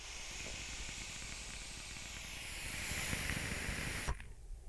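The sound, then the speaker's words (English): Steady hiss of a vape coil during an inhale, dense with tiny rapid crackles and pops, building slightly louder over about four seconds before cutting off abruptly, followed by a quieter background tone. “Do you hear the crackles happening?”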